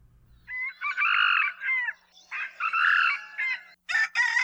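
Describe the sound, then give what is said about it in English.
Two loud red junglefowl (moa) crows in succession, each a harsh, drawn-out cock-a-doodle-doo with a rising then wavering tone, followed by a brief burst of sharp cackling at the end. “Moa, or red junglefowl, were the first birds introduced to Hawaii by humans, as they were brought by Polynesian voyagers to the Hawaiian Islands close to 1,000 years ago.”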